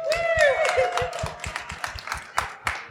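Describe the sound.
A burst of applause, many hands clapping in quick, uneven claps for about three seconds, with whoops and cheering voices rising over it early on before the clapping carries on alone.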